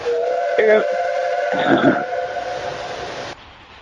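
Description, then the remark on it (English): A steam train whistle blows one long, steady, fairly loud note with a couple of rougher swells partway through, then cuts off sharply near the end. “That's a flipping train. That's a steam train.”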